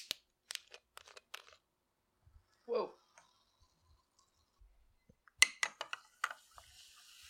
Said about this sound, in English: So we had just been enjoying the Adirondack lemon lime, and now we are transitioning to Poland Spring sparkling lime mixed with Poland Spring sparkling lemon. So we've got two bottles to open.